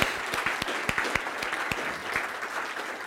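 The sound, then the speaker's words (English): A crowd applauds steadily to thank the people who helped with the afternoon teas, many hands clapping in a dense patter with a few sharper claps standing out, moderately loud and sustained throughout. “I want to give them a clap and just appreciate them.”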